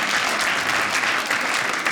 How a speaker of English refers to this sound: Have you guys been disciplined? Let's find out. Round of applause if you were spanked as a child.